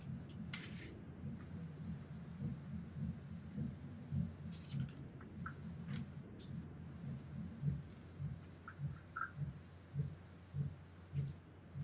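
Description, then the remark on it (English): Muffled, steady low thumping of the speaker's son drumming repeats in a continuous rhythm, with a faint hiss on top and no voices. “Oh, can nobody else hear that treble drumming or washing machine in the background?”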